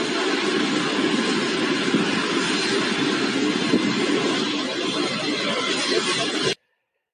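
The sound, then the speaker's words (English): A private jet, flown by Justin Trudeau to Costa Rica, roars steadily and loudly, a dense, unbroken engine rush that holds for about six seconds and then cuts off abruptly into silence. “While he flies his private jet to Costa Rica, no mask.”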